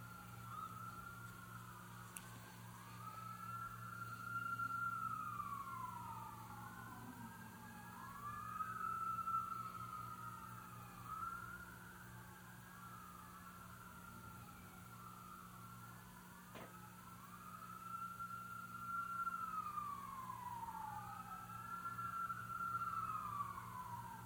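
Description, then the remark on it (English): Several emergency vehicle sirens wail outside as they go by, their rising and falling sweeps overlapping continuously, with a low steady hum underneath and no one talking. “Anyway, I'm sure you can hear those sirens in the background.”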